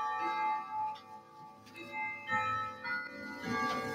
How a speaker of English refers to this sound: Hold on a sec. Got a clock going off here. Ding, ding, ding. What time is it?